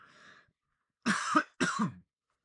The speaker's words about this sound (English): Excuse me. Podcast wouldn't be complete without a cough.